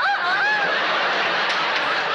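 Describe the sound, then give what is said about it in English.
A person briefly imitates a rooster's crow with a strained, warbling voice near the start, then a dense wash of laughter and crowd noise fills the rest. “Now crow like a rooster.”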